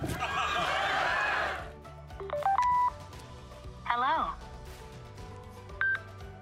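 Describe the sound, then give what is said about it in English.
After a brief spoken greeting, a phone dials with a quick run of stepped electronic tones, then a warbling connection signal and a final short beep, fairly loud. “Phone connected.”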